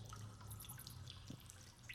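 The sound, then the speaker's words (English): Water drips inside a well, about 40 feet under the ground, with scattered small drops echoing over a low, steady hum and a quiet, hollow ambience. No one speaks. “You hear nothing but the sound of water and the echo of your own breathing, the creaking of the rope.”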